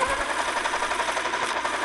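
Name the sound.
pencil being sharpened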